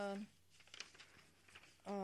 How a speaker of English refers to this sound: She's just going through her list, folks. Yes, that's the paper rattling you hear.